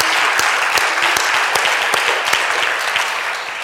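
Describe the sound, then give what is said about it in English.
A church audience claps together on Palm Sunday in a steady, dense wash of applause, with a few sharper individual claps standing out at a loose, regular rhythm, sustained throughout and easing slightly at the end. “Oh, clap your palms together.”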